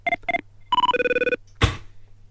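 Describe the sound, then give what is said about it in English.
An old-fashioned telephone bell rings: two brief trilling bursts, then a longer rattling ring, followed by a sharp clunk. No one speaks. “Got one of those old school phones.”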